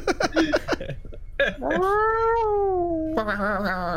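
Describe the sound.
A person imitates a cat chattering at birds: a quick burst of clipped, stuttering chirps, then a long wavering meow-like whine that bends upward at the end, fairly loud.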